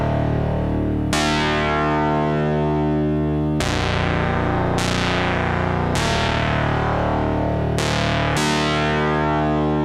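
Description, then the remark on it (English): A buzzy, harmonically rich tone from AJH Synth modules, with pulse-width modulation run at audio rates, played as sustained notes with sharp bright attacks that change every second or two, fairly loud with no voices. “what they've done is they've basically taken PWM and run it at audio rates.”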